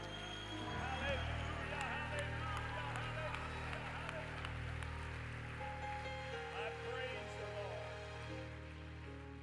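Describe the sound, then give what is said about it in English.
A church audience claps steadily while many voices shout and cheer in praise to God, a dense crackling wash of hands and voices lasting throughout, over a steady low sustained tone. “Now clap your hands and give him a shout with your voice.”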